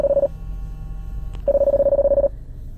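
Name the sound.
incoming phone call tone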